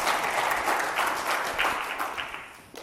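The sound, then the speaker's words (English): An audience applauds a cellist and pianist steadily, a dense wash of many hands clapping at once, holding a fairly even loudness before tapering slightly toward the end. “Can we give a round of applause for our cellist and pianist?”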